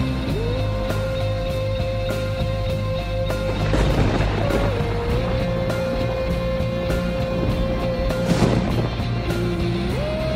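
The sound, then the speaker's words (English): A spaceship engine strains at 90% output as the ship is pulled back into a rift: a loud, continuous low roar under a droning whine that steps up and down in pitch, with harsh bursts of rattling noise partway through and near the end. “Engine output is now at 90%. We've slowed down some, but we're still being pulled back into the rift, Captain.”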